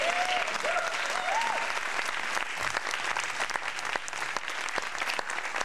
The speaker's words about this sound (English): I mean, I was waiting for the clap to go away. My bad.